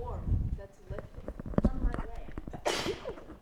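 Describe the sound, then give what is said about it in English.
A single sharp, hissing sneeze bursts out near the end, loud and breathy, after a stretch of low murmuring voices and faint clattering sounds. “I have to sneeze.”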